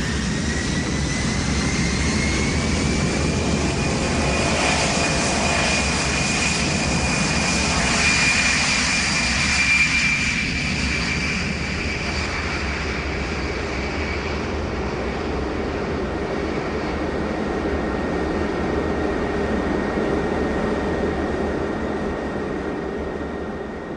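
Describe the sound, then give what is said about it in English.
An airplane in flight: a steady, loud engine drone fills the cabin throughout, a continuous low roar with a faint high whine riding on top, unbroken and without any voices. “It wasn't actually till the plane had taken off and was in the air when they were going around with the meals.”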